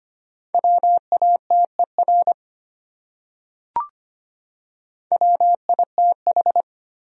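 Morse code sent as a steady mid-pitched beeping tone at a brisk 25 words per minute, spelling out common English words from a list of the top 100 words: two short bursts of dots and dashes separated by a pause with a single faint click, no voices.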